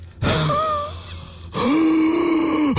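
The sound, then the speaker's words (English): Two long, loud heavy breaths down a phone line, slightly groaning, with a raspy, compressed quality; no talking. “Here's his heavy breathing again.”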